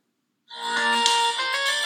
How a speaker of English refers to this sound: I think I want this one as a ringtone. I love this one so much. It is so good.